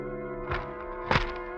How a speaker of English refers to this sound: Finally, at 6 o'clock in the morning, the newspaper is shoved under your apartment door.